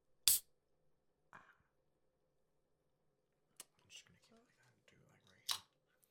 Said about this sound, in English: Because I would go around just biting all the pencils.